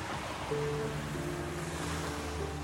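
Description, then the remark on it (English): A steady roar of street traffic on a massive six-lane thoroughfare running through the ruins of the Roman Forum in Rome. Small hatchback cars and motor scooters drone past, with sustained engine hums over a continuous wash of noise and no voices. “Here, those hatchbacks and motor scooters race where the business of ancient Roman civic life was once conducted.”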